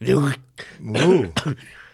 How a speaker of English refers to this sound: Cough.